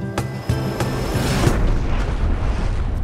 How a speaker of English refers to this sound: Oh my. A UFO has crashed in my backyard, has taken out my azaleas, and destroyed my bird bath.